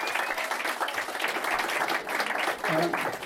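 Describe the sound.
A crowd applauds in a dense, steady wash of clapping that holds at full volume throughout, with a brief cheer or voice rising out of it near the end.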